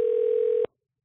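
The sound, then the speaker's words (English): A single steady telephone ring tone, a flat mid-pitched hum lasting about two-thirds of a second before cutting off abruptly into silence, like a ringback on an unanswered call. “Oh, wait, they still didn't pick up yet.”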